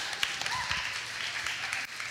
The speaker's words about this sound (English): So let's give her a big round of applause as she comes up.